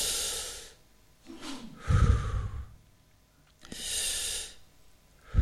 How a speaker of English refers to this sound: put your hands on your diaphragm like that and just go through five breaths, just five